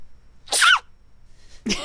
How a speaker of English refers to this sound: And the internet sensation, cute sneezing panda.